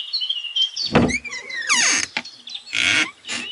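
A back door creaks open with high, drawn-out squeals and a few wooden knocks, fairly loud, with no voices.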